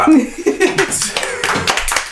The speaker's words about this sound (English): And why aren't you guys clapping?